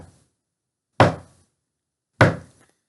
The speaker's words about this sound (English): I have no idea how loud that is. So if you guys are like, fuck you! I'm real sorry. There's like four knocks at the door.